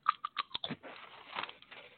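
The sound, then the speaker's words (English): Crisp crunching of ketchup-flavored potato chips being bitten and chewed, with several sharp bites up front followed by a steady, grinding stretch of chewing; no talking. “And they're very crunchy.”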